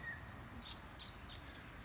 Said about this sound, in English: There's still some bird song. It is 5:37 a.m. Wednesday, December the 12th, 2018.